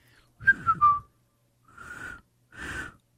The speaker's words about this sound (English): Something I still can't do, whistling. I'm not very good at it, but. I love to whistle.